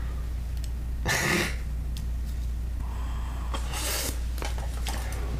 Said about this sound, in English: Mmm. Oh, nice water. And icy and refreshing. Yes. Here. Gulp. Water. I love it so much. So she's cold. So cool. Mmm. Cold water. Clink, clink. That's the ice.